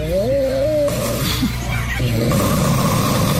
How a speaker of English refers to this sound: This feels weird hearing somebody I don't know snore. It feels like I'm watching them in bed.